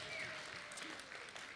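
A steady round of applause from a crowd, dense crackling claps at an even loudness throughout, with no talking over it.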